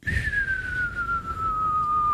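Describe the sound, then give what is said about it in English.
A single long whistled tone slides slowly downward in pitch for about two seconds, imitating the cartoon sound of Wile E. Coyote going off a cliff, with no talking over it. “That's me doing the sound of the end of a Wile E. Coyote when he goes off the cliff, right?”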